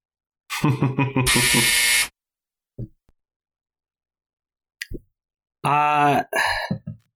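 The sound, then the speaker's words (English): A loud, harsh game-show buzzer in a film-guessing game blares for about a second right after a short burst of vocal sound, followed by scattered clicks and a second raspy, buzzing blast near the end. “I don't want to get buzzed, so I'm going to let it go.”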